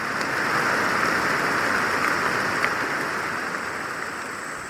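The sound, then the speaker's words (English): Steady rain pours down in a dense, even hiss in a tropical rainforest, a continuous wash of drops with no voices, holding at the same loud level from start to finish. “Yeah, I mean, this kind of rain it's like a godsend, because most of the time I spend doing field work is sweating.”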